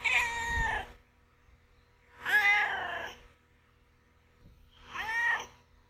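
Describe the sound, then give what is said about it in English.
Duarte, a pet cat, meows three times, each call drawn out and rising then falling, spaced a couple of seconds apart with quiet in between, clear with no talking. “All right, now it's time for Duarte's Corner, where we ask my cat Duarte his opinions on the book.”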